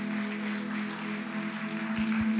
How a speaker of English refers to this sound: Let's give this wonderful family a round of applause. Can we do that?